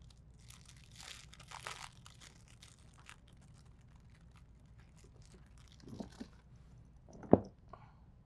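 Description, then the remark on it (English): Crinkly rustling of the packaging of a hash-wrapped joint being handled, with bursts of crackling around the start and a sharper crunch near the end, no voices. “I love the branding. The packaging on this is so pretty.”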